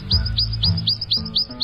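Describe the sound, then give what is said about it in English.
A Prothonotary Warbler sings a loud, ringing tweet tweet song of about seven sweet, rising notes, evenly spaced and quick, heard clearly with no talking. “And listen for this tweet tweet song.”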